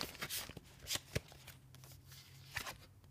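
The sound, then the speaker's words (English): Tarot cards being shuffled, a run of soft papery riffles and slaps with a few sharper snaps, fairly quiet, over a low steady hum with no talking. “I'm trying to shuffle these without ruining.”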